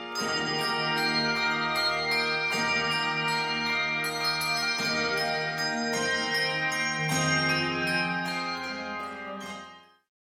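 A handbell choir plays Malmark bells, ringing out a sustained, shimmering tune, with bright chords struck in steady phrases and rich overtones layering together before the final notes fade away.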